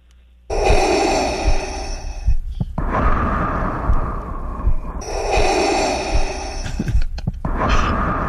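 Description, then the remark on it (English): Loud snoring of a sleeping person breathing through the mouth, with rough, raspy breaths cycling in and out about four times in a slow, steady rhythm, with no talking. “Sleeping, like their mouth, like snoring.”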